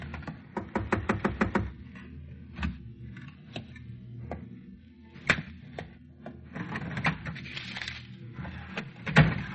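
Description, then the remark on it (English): A door is opened: a quick burst of rattling latch clicks, then scattered creaks, thumps and shuffling mechanical noises, with no voices. “Door.”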